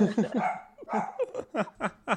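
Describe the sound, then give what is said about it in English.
A dog at home barks repeatedly in quick, sharp bursts, about half a dozen yaps in a steady rhythm, moderately loud. “Did we all hear the dog there?”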